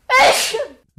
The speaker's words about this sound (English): Bless you